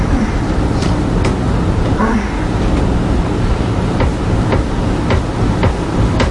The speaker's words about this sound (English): Is that her head going into the headboard? I think that's the bed frame, like hitting the wall.